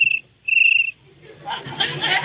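Two shrill, high cricket chirps, a short one followed by a longer trill, ring out clearly on their own before a voice starts talking.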